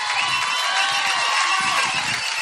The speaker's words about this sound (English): They found their shouts. They're doing the shout thing right now, you know.